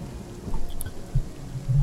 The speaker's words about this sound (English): It begins to rain because I like rain and for no other reason.